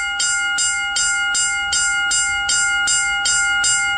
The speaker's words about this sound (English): Is it one of those alarms at a train track? Yes, railroad crossing.